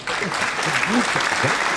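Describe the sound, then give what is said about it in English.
A burst of clapping applause given for the UK, a dense steady patter of many hands throughout, with faint voices murmuring and calling out underneath. “We got some claps for the UK.”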